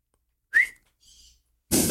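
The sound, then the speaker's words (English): A pet bird in another room gives a short rising whistle, then a fainter, higher chirping call, both sounding somewhat distant, before a sudden loud burst of noise cuts in at the end. “Oh, there's the bird.”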